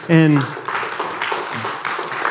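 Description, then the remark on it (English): A brief voiced sound opens, then an audience breaks into steady, dense clapping, a sustained patter of many hands at moderate loudness that continues to the end. “We can like clap for that.”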